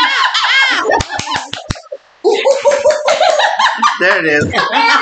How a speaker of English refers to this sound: Clap your hands like a monkey. Like a monkey?